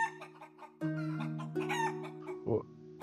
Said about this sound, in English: I like chicken. The chicken apparently doesn't like you.